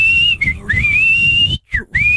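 A loud, sustained mouth whistle holds a steady high tone with a few brief dips and slides, broken by a short pause before resuming, with no talking.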